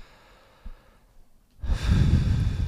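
After a quiet pause, heavy breathing blasts into the microphone, a loud, rushing exhale lasting about a second, with no talking.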